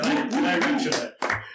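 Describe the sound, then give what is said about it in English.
A short burst of hand clapping at the opening of a quiz show, dense and steady, mixed with voices whooping and chattering over it before a brief dip and a louder rise at the end. “Are we clapping?”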